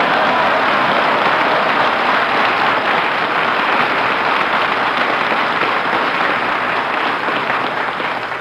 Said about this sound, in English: It's a little close in here, fellas. Applaud me and fan the air.